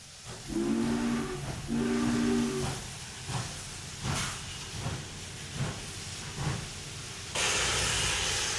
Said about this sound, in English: The train, with a shrill whistle, pulled into Semmering. For a moment the black coaches stood still in the silvery light of the uplands to eject a few vivid human figures and to swallow up others.